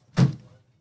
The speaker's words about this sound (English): Can you go close the door? Wow, you're going to make him get up? Not the guest.